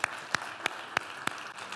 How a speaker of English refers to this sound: I think we ought to give God a hand clap of praise on that.